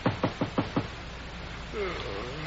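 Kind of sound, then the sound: household object, knocking on a door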